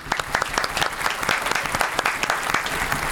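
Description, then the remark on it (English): A crowd applauds steadily, with one especially loud, sharp clap cutting through again and again above the dense patter of many hands. “Somebody's got a loud-ass clap.”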